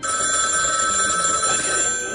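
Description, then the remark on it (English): A phone rings on the line during an outgoing call placed just after leaving GameStop, a steady electronic warble held for the whole moment at even loudness, with no voices over it. “It's ringing.”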